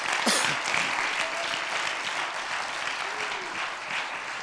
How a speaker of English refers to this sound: Somebody clap your hands unto the Lord.